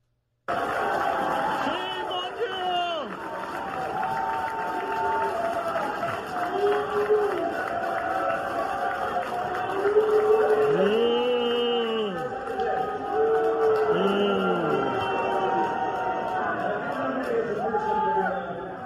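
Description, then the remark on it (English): A large crowd of Utah delegates boos Mitt Romney loudly and steadily, long drawn-out jeers swelling and falling over a constant roar of voices, with no clear speech rising above it. “That there is Mitt Romney's life now in front of the Utah delegates.”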